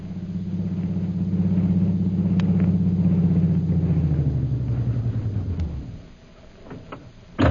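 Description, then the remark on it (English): A taxi with its shades closely drawn and its lights dimmed drives onto the flying field in Mandalay. Its engine rumbles with a steady low drone, then drops in pitch as the car slows to a stop and quiets, followed by a sharp click at the very end. “Meanwhile, back in Mandalay, a taxi drives onto the flying field, its shades closely drawn and its lights dimmed.”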